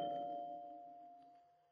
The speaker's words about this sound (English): I don't think that doorbell took the first time.